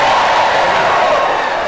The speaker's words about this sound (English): The Saturday Night Live character, Pat. Yeah. Yell if you remember Pat. Yeah.